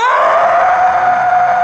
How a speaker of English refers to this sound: The boys run, but the boy with the knife can't, because the man has reached up out of the grave and is holding him back. He screams.